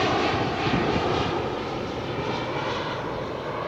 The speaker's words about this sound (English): Whoa, that's an Amazon plane. That's so sick. It says Prime. It says Amazon on the bottom of it, and on the side it says Prime Air.